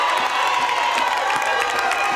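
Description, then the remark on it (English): A large outdoor environmental rally crowd cheers and shouts in a continuous roar, with scattered whistles and claps rising above the steady wash of many voices, loud and sustained throughout. “Why aren't you out here speaking to this environmental crowd?”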